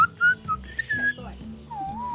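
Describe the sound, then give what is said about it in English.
A person whistles a short, wavering tune of a few notes, imitating a mournful sad horn, with a slow descending glide at the end; fairly clear, with soft background noise. “I wish I could do a sad horn. Can I try with a whistle?”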